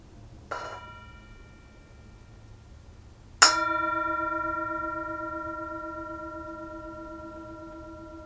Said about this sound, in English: And as always, we have the Tibetan singing bowl. You're invited to enjoy the sound of the bowl, the sound of the bell, and to be present to that. Here it is.